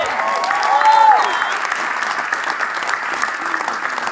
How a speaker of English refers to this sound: Oh, that's a good place to clap.